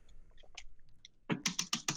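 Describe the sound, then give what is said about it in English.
Computer keyboard typing: light scattered keystrokes at first, then a burst of louder, rapid clacking keys, with no talking. “Everyone stop typing. Stop typing. Stop typing.”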